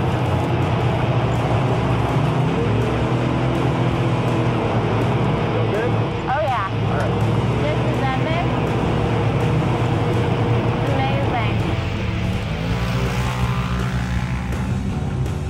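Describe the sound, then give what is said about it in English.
A car speeds along with a constant, loud roar of wind rushing past, over a deep engine and road rumble, with pitch rising and falling briefly as it accelerates. “You don't feel that speed in a car very well, because you get the wind blowing through here and everything, and I don't know, you're just getting an adrenaline rush from it.”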